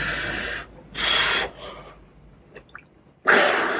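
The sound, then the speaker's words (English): Water sloshing and splashing in an ice bath in three broad, hissy bursts, with a quiet pause between them where a few faint drips plink before the final surge of moving water. “I'm going to finish my ice bath.”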